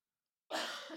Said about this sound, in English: And you're ruining the audio by coughing into your microphone. Sorry, I wasn't. I turned away.